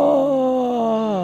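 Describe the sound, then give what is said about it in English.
A single voice imitates a roaring crowd with one loud, sustained, breathy "aaah" whose pitch sags slightly downward over about a second before cutting off. “And the crowd roars.”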